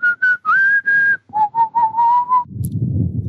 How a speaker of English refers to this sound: Just again, I'm not singing. Neither am I. Oh, I'm whistling.